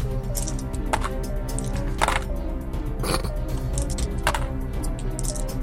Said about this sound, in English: Okay, it's time to roll some dice.